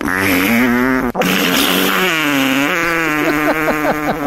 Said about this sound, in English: So let's take a listen. And at the end of this, guys, we're going to find out what the funniest fart is.